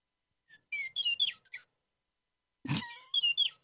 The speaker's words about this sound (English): Oh, my little birds. Where is that bird coming from? Oh, girl, you got a little pet. Aw. I brought one of my birds with me.